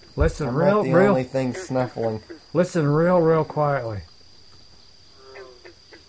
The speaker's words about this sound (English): Hear that? I don't know what that is. That might be a tree frog. Or it could be one of those giant grasshoppers. Boy, they get big in the swamp here.